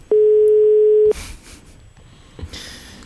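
A single steady telephone ringback tone sounds for about a second, clear and fairly loud, while calling a man again by phone, followed by quiet handling noise and a couple of soft clicks with no one speaking.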